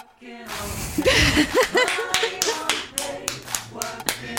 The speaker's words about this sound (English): Well, round of applause.